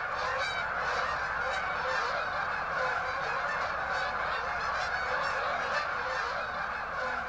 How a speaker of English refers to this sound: And they land differently than ducks. Ducks slam into the water and geese kind of gently drop in. It certainly gets very noisy, and the numbers of the geese in prime time in about mid-October just gets overwhelming, thousands and thousands of them.